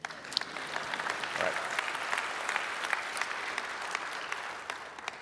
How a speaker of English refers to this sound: Indeed, that is worth clapping about.